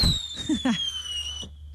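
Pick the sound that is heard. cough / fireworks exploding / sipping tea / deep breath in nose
fireworks exploding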